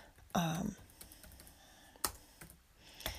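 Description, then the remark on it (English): A few scattered keyboard clicks, fairly crisp, tapping at an irregular pace with pauses between, after a brief vocal sound near the start. “Sorry, I'm not typing.”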